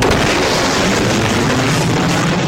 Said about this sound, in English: Woo! Broke the sound barrier. Shockwave shattered every window in town.